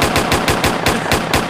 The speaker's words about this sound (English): Hit the button. There's a button? Hit the button. Some gunshots or something.